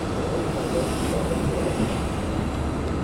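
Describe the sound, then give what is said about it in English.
An articulated 14D city bus on 14th Street, New York, rumbles up to the stop, its heavy engine drone steady and loud with broad street noise, no distinct pauses or brake hiss standing out over the continuous roar. “Oh, the bus is here, the 14D.”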